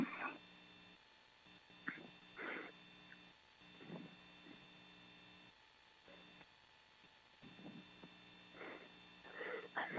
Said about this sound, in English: Excuse me. I caught a sneeze anyway.